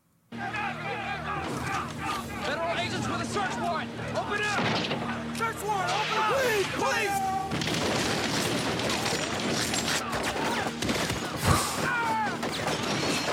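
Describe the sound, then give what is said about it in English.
Bursts of gunfire crackle and boom through a chaotic movie scene of a government siege, as men rush at a door with guns, spraying fire, mixed with shouting voices and a steady rumble, with a sharp, louder blast standing out near the end. “Is that they're rushing at the door with guns and they're spraying.”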